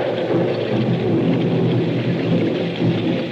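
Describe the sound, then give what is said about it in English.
Heavy rain pours steadily while deep, rolling thunder fills the low end during a lightning storm along a road, a dense continuous wash of storm noise with no voices. “A flash of lightning shows the gray walls and conical slate-roofed towers of a chateau set some distance back from the road.”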